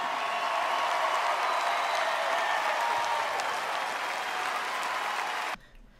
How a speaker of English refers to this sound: I demand that you rise to your feet and applaud not only for yourselves, but for the foundation we are laying for our children.